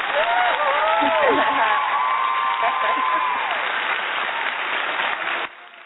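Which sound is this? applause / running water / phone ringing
applause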